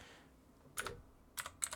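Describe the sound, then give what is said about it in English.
A few quiet, sharp keystrokes on a computer keyboard, typing in a notepad to keep score, tap out in an irregular cluster against a hushed background, with no one speaking. “Just while clicking notepad.”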